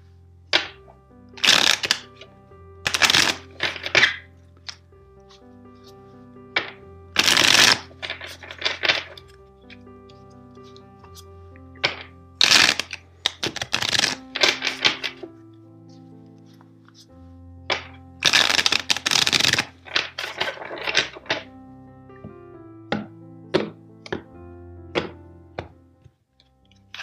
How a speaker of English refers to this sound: Now let's start with your reading. First, let's shuffle the deck four times for you.